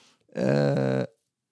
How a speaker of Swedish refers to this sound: Också prutten.